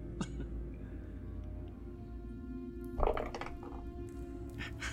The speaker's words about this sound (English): It's a what? It's a crack die. Yay! Roll it, puppy, again. Roll again.